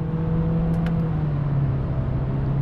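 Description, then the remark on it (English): The engine of a small SUV with a continuously variable transmission, switched from economy to sport mode, drones steadily at a low pitch over broad road noise, its tone sagging slightly toward the end. The level stays even throughout and no one speaks. “So I see a opportunity here to put my left blinker on and get it out of standard econo mode here and throw it into sport mode. Hear that? Listen to that engine.”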